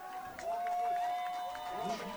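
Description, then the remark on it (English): A football crowd cheering in support of the Tigers in a steady, dense roar of many voices for about two seconds, with a sustained high tone running through most of it. “As the crowd erupts in support of the Tigers.”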